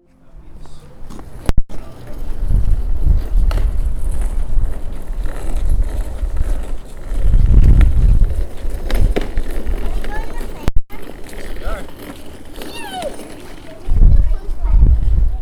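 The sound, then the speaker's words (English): Outdoor street ambience outside Poudre River Library District's Old Town Library: a steady wash of background noise with indistinct voices, low rumbles of passing traffic swelling around the middle and end, and scattered light footsteps and clatter. “Those are sounds from outside Poudre River Library District's Old Town Library.”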